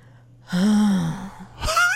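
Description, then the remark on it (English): A voice mimics heavy breathing: a long, breathy, slightly voiced exhale followed by a sharp, quick gasp of an inhale, with no words spoken. “When you are about to make a romantic move on me, you do the heavy breathing thing too.”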